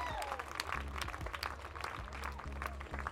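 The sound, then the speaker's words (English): A faint applause sound effect: a crowd clapping in a steady, dense crackle throughout, with a low droning hum running underneath and no voices. “Have you just put a clap in? I can half hear the clap.”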